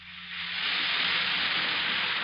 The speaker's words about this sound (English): And that's the sparkling sound of sal hepatica in a glass of water.